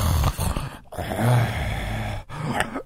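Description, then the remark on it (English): Heavy, loud breathing: long, raspy breaths with a faint groaning edge, drawn out over roughly three cycles with brief pauses between, and no talking. “And then like he comes out from wherever the fuck he was, and he like sits down, and I'm that obviously... breathing. Can you hear just?”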